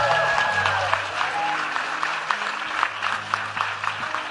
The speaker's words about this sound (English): Praise the Lord. Special hand clap for the kids who came in and helped us sing today.